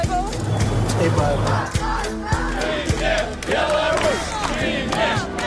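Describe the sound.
A large crowd that has poured onto the street shouts and chants "Resign" in unison, many overlapping voices rising in rhythmic bursts over a dense, steady roar of babble, with a low rumble beneath.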